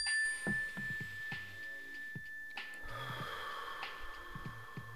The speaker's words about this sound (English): But let's, when you hear this mental health mindfulness bell, everybody just take a deep breath. Here we go, ready?